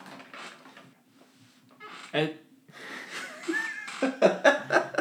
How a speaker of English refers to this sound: My squeaky chair.